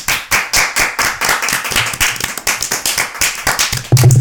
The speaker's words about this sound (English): Clap me.